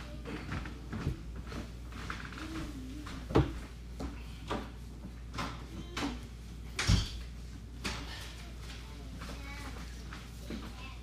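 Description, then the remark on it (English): A back door is shut, with a couple of solid knocking thuds and some rattling handling, over a steady low hum and faint background voices. “Do you want to close that back door?”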